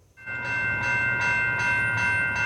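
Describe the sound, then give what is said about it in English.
A freight train rolls along the tracks running through Langley across the bypass near Glover Road, with a heavy low rumble, a steady ringing metallic tone, and a regular rhythmic clacking of wheels over rail joints. “These train tracks running through Langley across the bypass near Glover Road could one day be carrying passenger trains, not just freight.”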